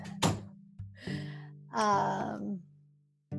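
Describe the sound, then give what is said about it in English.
A door is shut: a sharp knock, then rustling scrapes and a longer, harsher creaking burst, all over a steady low hum, with no one talking. “Can you shut the door?”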